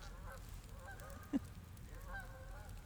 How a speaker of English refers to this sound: I hear geese.